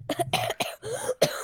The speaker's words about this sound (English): That's coughing.